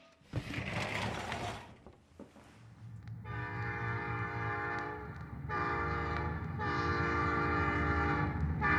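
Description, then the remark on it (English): A train heading south rumbles along the rails with heavy low-end clatter, then a loud, sustained multi-tone horn blares in long blasts over the steady rolling noise, prominent. “Train going south.”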